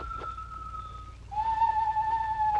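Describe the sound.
Two long, steady whistled notes imitate a bird call: a thin higher tone fades out, then a slightly lower, louder one holds for over a second above a low rumbling background.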